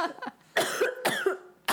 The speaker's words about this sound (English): Sorry, I got a cough attack.